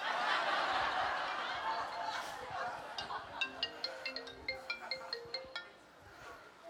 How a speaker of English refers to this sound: that's not me. Oh, one of our band people left their phone up here. I'm going to go answer it.